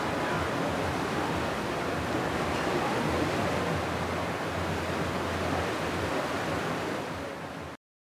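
A steady, dense rush of ocean water breaking against a ship's hull, fairly loud, with no distinct pauses between waves and no voices.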